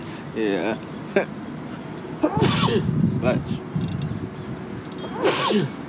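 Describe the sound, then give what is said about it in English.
A sharp sneeze bursts out, followed by a second one a few seconds later, with people speaking around them over a low background hum. “Bless you. Appreciate it.”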